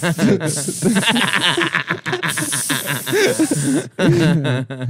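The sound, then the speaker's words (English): A voice imitates sizzling on hot coals with sustained, breathy hissing mixed with voiced, chuckling sounds, in two long bursts broken by a brief pause, fairly loud. “And then it like sizzles anyways, but they still have a gay guy there to make the sound effects.”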